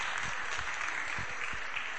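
A crowd applauds steadily, a dense wash of many hands clapping at once with no voices standing out, sustained at an even level throughout.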